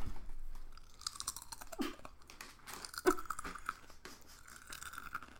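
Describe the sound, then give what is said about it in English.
Loud crunching as someone bites and chews a crisp Sun chip into a microphone, with irregular bursts of crackly crunches over several seconds and no talking. “I'm going to pick up the sun chip and eat it.”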